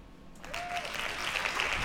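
sound effect, hand claps sound effect

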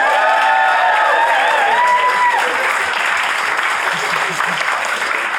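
crowd, audience applause

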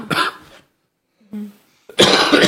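human body sound, coughing

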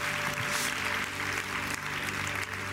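crowd, audience clapping

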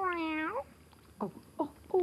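animal, cat meowing

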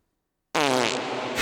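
sound effect, fart sound effect

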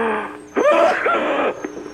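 human body sound, sneeze

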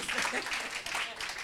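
crowd, audience clapping

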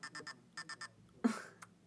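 household object, alarm clock ringing

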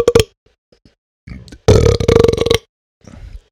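human body sound, person burping

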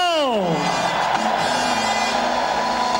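crowd, crowd cheering and shouting

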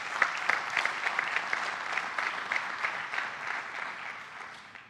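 crowd, audience applauding

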